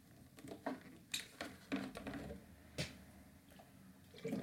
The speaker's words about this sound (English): Sorry, I had to take a sip of water.